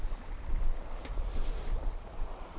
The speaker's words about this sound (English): even though many people, even people fishing the coast here in Denmark, would think that this day was too windy for fly fishing